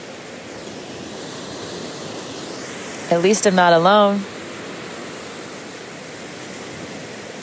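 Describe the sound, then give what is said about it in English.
Steady, hissing wash of waves at the beach runs the whole time, an even roar with no clear breaks. A single short spoken phrase rises briefly over it midway. “I'm at the beach, and I used to do this all the time.”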